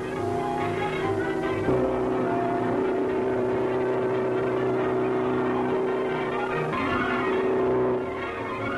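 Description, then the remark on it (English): A race car engine drones steadily at high speed while lapping an oval track on an endurance record run, a sustained, humming roar with slight shifts in pitch as it keeps circling, with no voices present. “Around and around the oval, piling up miles, piling up records.”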